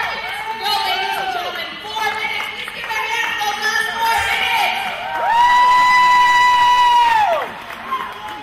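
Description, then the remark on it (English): A loud, sustained victory scream rises and holds for about two seconds over a roaring, cheering crowd, with other shouts and whoops scattered through the noise before it. “Just, it's kind of a victory scream there. You hear me in the background and also helping me to get through the feel of the power of heavyweight.”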